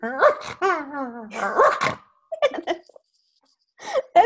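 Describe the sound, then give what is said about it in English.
A person imitates a small dog's bark: a few yappy, whining barks with rising and falling pitch, a pause, then several more short barks. “If you tell me any dog in the world, I could do its bark.”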